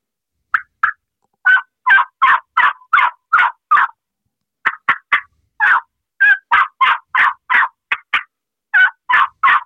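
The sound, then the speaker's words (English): A turkey call run through a lively, loud series of yelps mixed with sharp clucks and quick cuts, in rapid, uneven bursts with brief pauses and no talking. “What I mean by realism, instead of just yelping, add some clucks, some little cuts, and add more excitement to the calling, like this.”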